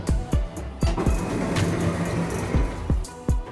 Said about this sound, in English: Doors closing.